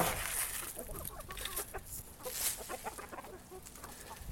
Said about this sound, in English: So let me call them in and I'll show you some chickens. Hey, chickens, what's up? And I throw out some seeds. And you're going to see them all go to the seeds. Hey, guys, what's up?